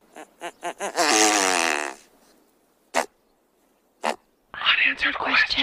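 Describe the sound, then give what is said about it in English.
A great bustard, a bird of Europe and Asia, calls: a few quick low pulses run into a loud, buzzy, rasping burst. Two sharp clicks follow, then a noisy, rhythmic stretch to the end. “Have you ever heard of the Great Bustard?”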